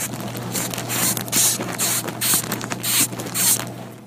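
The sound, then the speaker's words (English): A moth's sound: a series of about five raspy, hissing bursts repeating roughly once a second, each swelling and fading over a faint scratchy crackle and a steady low hum. “That's a sound a moth makes. It's the insect world.”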